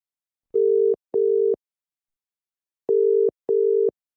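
signal or alarm, telephone ringing tone

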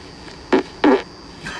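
human body sound, fart

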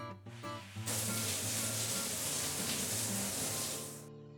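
household object, shower water spraying

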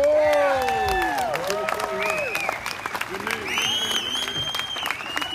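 crowd, audience applause and cheering

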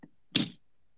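vehicle, car door shutting

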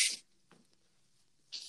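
human body sound, sneeze

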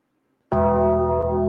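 sound effect, bell ringing sound effect

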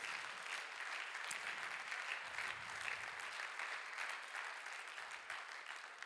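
crowd, audience clapping hands

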